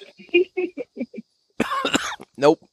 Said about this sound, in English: Nope. That's a hard no. Couldn't keep from coughing.